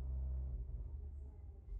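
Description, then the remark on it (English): Deep, throbbing low-end bass rumbles steadily from a car stereo outside in Oakland, muffled and heavy with little high end, filling the background without any clear voices. “Ooh, they're rattling this shit. Ooh, this is a bop. Oakland's loud.”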